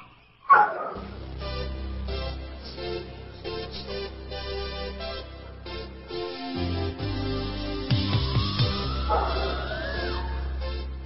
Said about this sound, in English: Ah, nothing like hearing a live dog on the other feed, on the other telephone feed. Kind of makes people sit up and go, I wonder what this show's going to be about.